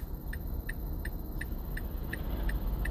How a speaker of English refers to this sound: You hear my signal light.